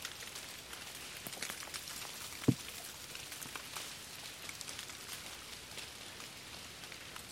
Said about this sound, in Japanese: 細かな雪粒と大きな大きな雪の氷。